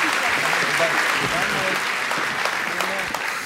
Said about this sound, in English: Yeah, let's give another round of applause just for all these planters and their families.